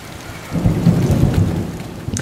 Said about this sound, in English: Ah, there was a thunderstorm during one of the scenes that we were recording. It was with a Welsh captain in Salisbury, and it just became part of the recording. We kept trying to ignore it.